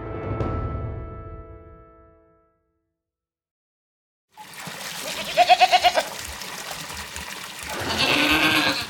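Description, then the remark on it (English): A goat being washed in a tub bleats in a rapid, wavering burst partway through, set amid splashing water and sloshing noises, with a quieter harmonic cry at the start before a brief silence. “Well, it wouldn't be if you'd gotten in the tub when I told you instead of insisting we wash your goat.”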